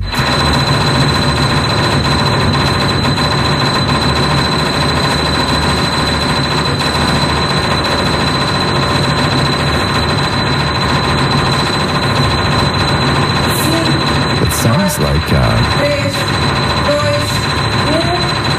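A single piano key played at world-record speed, 824 times in one minute, the strikes blurring into a loud, steady, buzzing tremolo like a drill that holds one pitch throughout, with a few sharper accents near the end.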